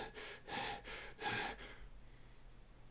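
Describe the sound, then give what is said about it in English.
A person imitates the heavy mouth breathing of Batman as played by Bale: four loud, raspy in-and-out breaths in a quick, steady rhythm, then the sound drops away to near silence. “Also, a lot of mouth breathing, Batman.”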